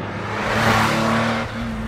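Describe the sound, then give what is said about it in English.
A car engine revs hard as the vehicle is driven as quickly as possible to a bakery, a steady loud roar with a brief dip in pitch near the end as it shifts gears, continuous with no voices. “She throws on her clothes and drives to the bakery as quickly as she can.”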